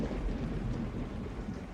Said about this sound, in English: The bad weather continued all month long, and then a major storm hit that was stranding her.